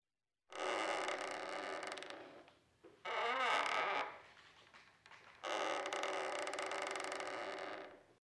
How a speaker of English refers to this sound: The foreboding sound of wooden boards breaking all around us interrupts my train of thought.